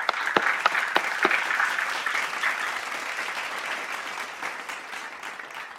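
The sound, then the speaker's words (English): A crowd claps steadily for several seconds to welcome the founder of Monday Books at a Hispanic Heritage Month event, a dense, even wash of applause with a few sharp, loud claps standing out early on, then gradually tapering slightly. “Round of applause.”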